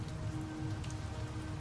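Steady rain patters on a surface, a soft continuous wash of droplets with a low rumbling undertone, fairly quiet and even throughout, with no voices.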